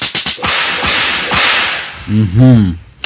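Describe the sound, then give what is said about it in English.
A quick flurry of sharp, loud belt whip cracks snaps out, several in the first second and another shortly after, followed by a brief wavering vocal yelp. “That's who gets my belt.”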